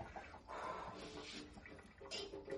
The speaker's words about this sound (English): Shake the strainer with the potatoes. Get all the water. Actually, while that strains for a second, let me get the potato masher.